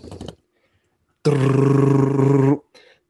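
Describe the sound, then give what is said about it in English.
A voice imitates a drum roll before the number one pick in a snake draft of Chick-fil-A menu items is announced, a loud, sustained rolling trill lasting just over a second, preceded and followed by brief bursts of other voices. “Give me a drum roll, guys.”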